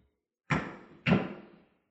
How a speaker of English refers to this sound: Suddenly they hear a knock. And Snowbird says, Dennis, is that you?